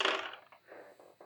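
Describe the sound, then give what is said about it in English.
Three dice clatter onto a hard tabletop in a bright burst for an arts roll in a tabletop game, then tumble with a few quick, fading knocks before settling. No one speaks. “You got three dice now,”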